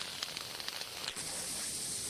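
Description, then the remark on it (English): A voice imitates a sputtering garden hose gasping for water with nothing coming out, with breathy, uneven spurts of hiss for about a second that settle into a steady, airy hiss. “And your hose is like gasping for water. There's nothing coming out.”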